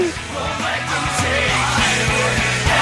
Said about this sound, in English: Boy, I don't remember this part. I must have tuned out the shouting part. The gang vocals? It's not shouting. That's a lot of noise. It's noise.